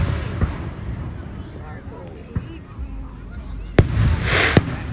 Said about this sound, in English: Tiny oh, fireworks. That one went off and like exploded, but then had other little explosions with it. Well, and, like it branched out like a tree. Well, sound wise, it was a dud.